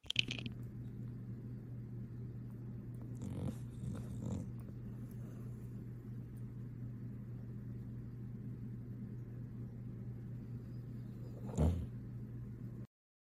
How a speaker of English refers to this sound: If a dog snoring doesn't cleanse your soul, I don't know what will. All right, that was the cleanse.